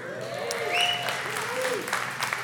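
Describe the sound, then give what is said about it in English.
An audience claps steadily for the speaker's wife, a dense, even wash of applause with a few brief vocal whoops rising above it. “You can clap for her.”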